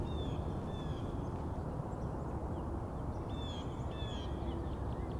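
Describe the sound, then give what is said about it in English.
Birds sing in mid-March in two short bursts of high whistled phrases, one early and one later, over a steady rushing background noise. “So it's a good time for all these bird songs to get started.”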